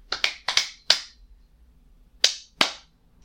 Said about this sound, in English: Should we clap? Clap. Kasi we need to sync. We need to sync the video and the audio. Ah, sige. So we kind of need to clap as well.